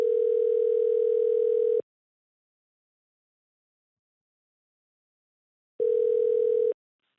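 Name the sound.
telephone call being dialed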